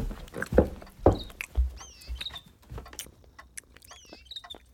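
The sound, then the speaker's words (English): Chickens clucking, with short high squeaky calls and chirps scattered over a few seconds, mixed with soft thuds and shuffling. No one speaks. “Now, I'm going to see to the chickens.”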